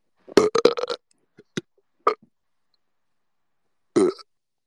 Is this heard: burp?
yes